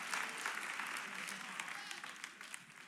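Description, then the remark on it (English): An audience claps steadily for about three seconds, a dense wash of hand claps at an even, moderate loudness with no voices standing out. “Just keep clapping, baby.”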